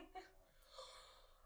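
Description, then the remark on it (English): A brief, breathy yawn with a sharp inhale followed by a drawn-out airy exhale, fairly soft, with no words spoken. “Sorry, I had to yawn.”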